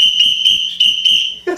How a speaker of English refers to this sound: So I'm whistling, we've got the chandelier bar, I sit down, and there's 32 people at the bar.